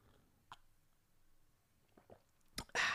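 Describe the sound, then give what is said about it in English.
Someone sips lukewarm coffee: a few faint mouth clicks in near silence, then a short wet slurp followed by a louder, breathy rush of noise at the end. No one speaks. “So I'm going to take a sip of my coffee right now, which is probably cold by now.”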